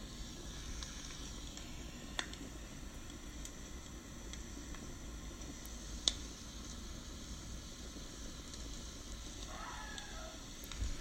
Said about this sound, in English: You just had a bonfire in your backyard. And all of your friends are gone. It's just you and the crackling embers.